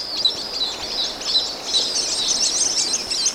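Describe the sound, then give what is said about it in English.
A flock of white-collared swifts, huge swifts the size of small falcons, flying fast toward a small waterfall with a cave entrance at sunset in southern Mexico, calls continuously, a dense chatter of high, shrill twittering notes that rises and falls in bursts, with no voices present. “It's a flight of white-colored swifts, huge swifts the size of small falcons, winging toward the waterfall.”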